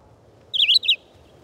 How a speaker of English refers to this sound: The abundant red-eyed vireos in the treetops can become monotonous in the regularity of their short, robin-like phrases.